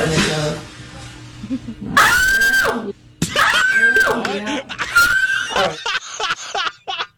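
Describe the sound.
Short, high-pitched screams ring out up close, three sharp squealing cries in quick succession, loud against a faint murmur of background voices.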